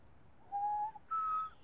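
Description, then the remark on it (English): A bird calls twice with clear, sustained whistling notes, the second pitched a little higher and brighter than the first, over a quiet background with no talking. “Okay, so the purpose of today's episode isn't to tell you about the bird that's screeching in the background.”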